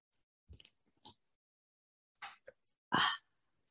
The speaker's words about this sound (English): The time is 1:19. I'm about to take the first sip of this sparkling water.